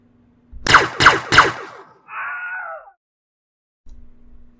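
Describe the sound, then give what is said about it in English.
Three sharp, loud blaster zaps fire in quick succession, spliced with the Wilhelm scream: a brief, wavering high-pitched scream that trails off, with no one talking. “I spliced some blaster noise with the Wilhelm scream.”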